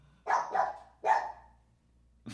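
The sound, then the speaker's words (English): A dog barks three times, a quick pair followed by a single louder bark, clear, with a brief sharp noise cutting in at the very end and no talking. “Is he barking at Mango?”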